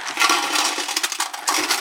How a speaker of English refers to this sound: Do we have anything icky that you could put on top of those corn nuts? Oh, yeah. I'll pour water on it.